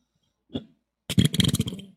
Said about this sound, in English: You were belching up a storm there, sir.